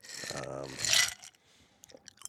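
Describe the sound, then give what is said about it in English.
Ice crunches between teeth in a gritty, bright burst while a voice sounds, then a few faint, scattered crunching clicks follow in near quiet. “Luke's gonna complain about that ice noise.”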